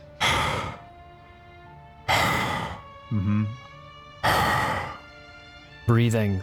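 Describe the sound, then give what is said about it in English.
Heavy, raspy breathing through a mask, three slow drawn-out breaths, loud, with a brief voiced hum between them; a person imitating the sound. “breathing through a mask right behind you.”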